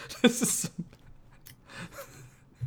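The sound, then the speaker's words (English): Crunchy chewing of sunflower seeds being cracked opens with a loud burst of crackles, then softer scattered crunches and clicks over a faint background murmur. “I swear I hear someone chewing on sunflower seeds and it's driving me fucking crap.”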